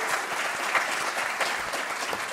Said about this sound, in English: But thank you all. So round of applause to all of you for coming out here.